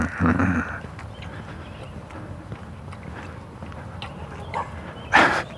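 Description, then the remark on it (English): A dog trots along a sidewalk outdoors in the morning, carrying its own leash in its mouth, with the leash attached to its harness. Its light, quick footfalls patter steadily, with a brief louder scuffing burst at the start and another near the end. “Dog taking himself for a walk.”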